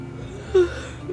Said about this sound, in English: Oh my god, I'm yawning. How embarrassing.